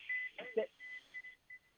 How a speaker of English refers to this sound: What was that? Is there some sort of an alarm going off? Are you okay? Oh, sorry. I'm boarding the bus.